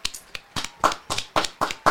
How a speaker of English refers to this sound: Give yourself a round of applause, everybody.